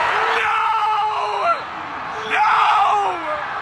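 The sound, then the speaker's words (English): A small group of people cheers and yells excitedly in two loud bursts, with high, whooping voices rising over a dense wash of shouting before briefly dropping off and surging again. “They're celebrating right in front of me.”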